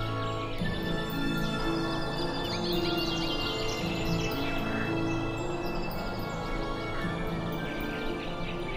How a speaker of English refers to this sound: And after a long, long night, finally, it's morning again. The sky starts to turn pink. The birds are greeting the light of the sun.